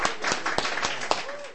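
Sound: audience applause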